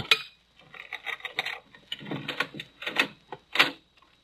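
A series of sharp scratching and scraping strokes as a pane of glass in French windows is cut, in short irregular bursts with small clinks, moderately loud, with no talking.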